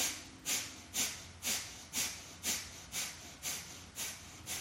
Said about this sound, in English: Either choose to stay here breathing or use the breath of fire, bellows breath.